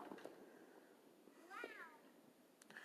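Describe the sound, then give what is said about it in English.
A single cat meows once, a clear rising-falling call near the middle, against a low background murmur with faint noise around it. “I'm joined by the other otherworldlies, Star Cat and Twinkle Cat.”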